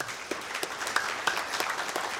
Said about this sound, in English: The praise report is our junior high and our youth camp is completely filled, and that's an awesome thing. Can I get a round of applause for that?